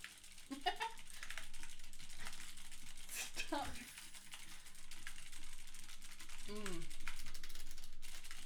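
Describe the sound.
Steady clicking of keystrokes on a mechanical keyboard with clicky switches runs throughout, fairly loud, with brief rising voice-like chirps breaking in a couple of times.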